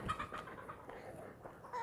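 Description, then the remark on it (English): A rooster crows faintly in the distance, its thin, drawn-out calls barely rising above a soft outdoor background. No one is speaking. “I'll let the rooster's cow in the background here as it fades out into the distance.”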